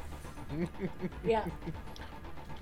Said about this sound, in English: Listening to a dog whine at my door because I locked him out of the room.